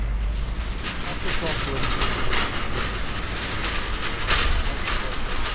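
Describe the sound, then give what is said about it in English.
Present-day Riley Square, recorded by audio and accessibility consultant Gavin Griffiths: a steady urban hubbub of low traffic and engine rumble underneath, with indistinct voices of ordinary people going about their day and scattered bright clatters rising now and then. “These are sound recordings of Riley Square in present day.”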